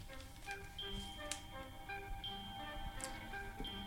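A game show countdown clock ticks steadily over a tense, plinking musical cue, with a few sharper clicks standing out. Fairly loud, with no talking.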